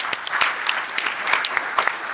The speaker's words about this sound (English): By the way, Walt, Mossberg and I did it together. So everybody give a clap for Walt Mossberg.